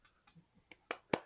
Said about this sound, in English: Clap.